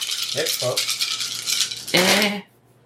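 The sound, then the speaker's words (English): Dice rattle steadily for about two and a half seconds in a bright, clattering wash, with a couple of short vocal sounds over it, before the rattling abruptly stops. “Well, that's exactly how many dice you gave me back.”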